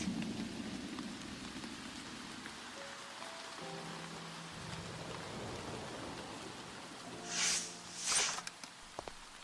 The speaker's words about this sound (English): Can you believe this rain? Jeez.